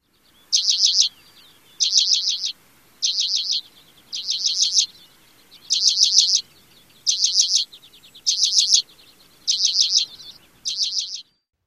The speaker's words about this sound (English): And the third is a rattle or trill. This is the element that reminds me of the lesser goldfinch.